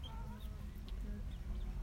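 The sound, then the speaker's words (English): Chickens cluck softly now and then, short faint calls over a steady low rumble of outdoor background noise, with no one talking. “Like the bobcats, they like some gourmet chicken, right, guys?”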